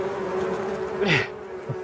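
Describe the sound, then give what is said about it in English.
A dense, steady drone of buzzing bees fills the whole moment, fairly loud, with a brief sharper swell partway through before settling back into the hum. “And I was actually thinking of mounting a bunch of killer bees on people and just wherever I hate it, send them all over the place.”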